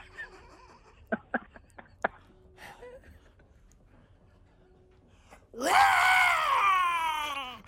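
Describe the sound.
After a few seconds of near silence with faint taps, a person lets out a loud, drawn-out roar imitating a tiger, rising sharply then sliding down in pitch over about two seconds.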